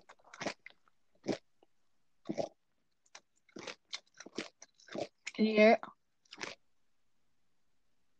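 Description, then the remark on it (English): Crunching as someone bites into crisp food and chews, a series of sharp, irregular crackly bursts, with a brief spoken question in the middle. “Can you hear this crunchy?”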